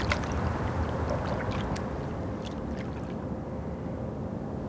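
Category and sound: nature, flowing river water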